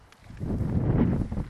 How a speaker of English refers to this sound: The wind's picked up a little bit.